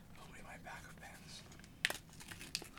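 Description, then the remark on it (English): Quiet crinkling of plastic pen packaging being torn open, a steady rustle broken by two sharp ripping snaps near the end. “Hold on. Open my pens.”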